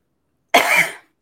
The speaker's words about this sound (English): Then there came, well, what if I have to cough like I'm about to right now?